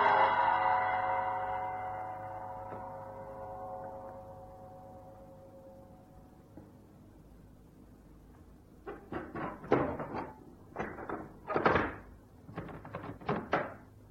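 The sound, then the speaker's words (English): A single deep gong stroke, sounded inside a temple on Kossa Street when a silk rope over its heavy iron door is pulled, rings out, its shimmering tone slowly fading away over several seconds, followed after a pause by a series of muffled thuds and knocks. “pulled on the silk rope that hung from the high rafters over the door. A gong sounded deep inside the building.”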